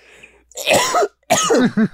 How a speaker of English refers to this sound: It made me cough.